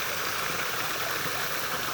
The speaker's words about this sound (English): But for now, I'll leave you with the sound of the stream.